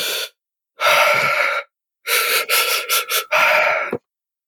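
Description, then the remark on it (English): Loud breathing exercises with long, deep inhales and exhales, then a series of short, choppy breaths before a final long, rasping breath, with no talking. “I'll start doing some breathing exercises.”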